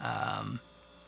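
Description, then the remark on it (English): A single loud, low, throaty burp lasting about half a second, with a rough buzzing tone, then quiet. “Sorry, that burp really caught me off guard and really hurt.”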